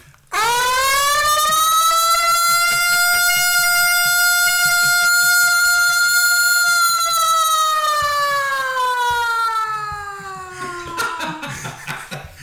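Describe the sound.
A loud, sustained siren-like wail imitated by a human voice, holding a steady pitch for about ten seconds before sliding downward and breaking off into breathy noise.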